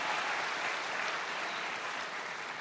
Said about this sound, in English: I need about 500 men to clap your hands right there. Come on, my brother, clap your hands.